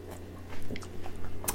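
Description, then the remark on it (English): A sip of a hot London Fog tea latte: a short slurp with soft wet mouth sounds and a faint swallow, over a steady low hum and no talking. “First sip of coffee.”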